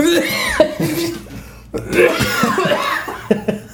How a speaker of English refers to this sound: You're coughing and hacking over there. No, I'm sorry. I just inhaled as you spray.